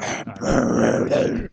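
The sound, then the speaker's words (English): A person imitates Batman's low, gravelly growl, one sustained rasping snarl lasting over a second, loud with a brief catch near the start. “It's why his teeth are so bad. It's why he growls.”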